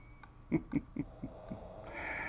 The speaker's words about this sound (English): And the nice little snoring Frenchies in the background.